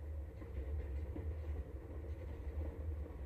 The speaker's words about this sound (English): He popped out of my mind onto a drawing pad on a train ride from Manhattan to Hollywood